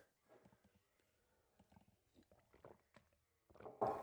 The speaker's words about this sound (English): I'm going to take a quick sip of coffee.